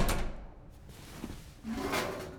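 A trash chute door in an apartment building hallway is pulled and shut after a suit is stuffed into the chute: a brief clunk, a rattle, then a scraping slide ending in a low rumbling thud. No voices.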